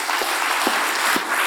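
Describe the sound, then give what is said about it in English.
A church audience clapping hands together in praise of God: a dense, loud wash of many claps with a steady beat of stronger accents roughly every half second, and no voices. “God desires us to lift up and clap our hands. I want everybody to do this just for a second.”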